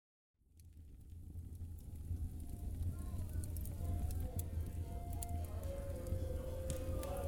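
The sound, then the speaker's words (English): Steady rain from a settling storm fades in and holds as a continuous wash, with a deep low rumble underneath and scattered crisp drips and ticks on top, moderately loud. “The storm is settling and you are free to go.”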